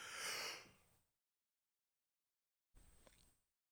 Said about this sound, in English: Oh, man, that was a good yawn. Intermission. Yeah, yeah, yeah. Sorry to leave you guys hanging there for the last 3 days. I'm just kidding. That was a really long yawn, yeah.